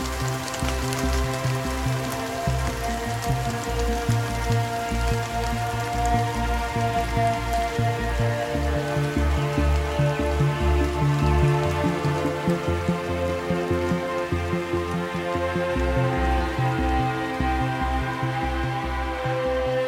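Steady rain falls outdoors at a former cannon battery high in the Dolomites, overlooking Mount Cristallo, a continuous even patter on surfaces for the whole stretch at a moderate, unchanging level, with no voices present.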